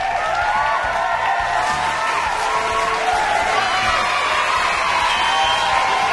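A sustained round of applause and cheering from a crowd, steady and fairly loud throughout, with dense clapping and scattered whoops and whistles rising above it.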